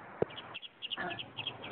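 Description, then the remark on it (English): Birds chirp outdoors in quick, repeated high-pitched bursts, fairly faint, with a brief soft knock near the start and no one talking. “You hear the birds?”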